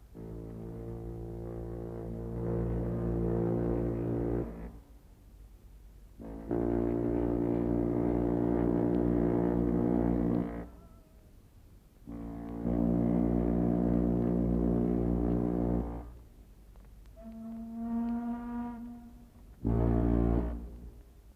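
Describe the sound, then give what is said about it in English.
The ocean liner America's deep twin sirens sound three long, loud, droning blasts in a row as farewells are exchanged and the liner weighs anchor, followed by a shorter, higher-pitched horn tone and a brief final blast. No one speaks. “Then the America's basso twin sirens.”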